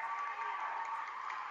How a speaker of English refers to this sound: And the Amherst Bronco fans will give the junior a big round of applause as he'll sit down.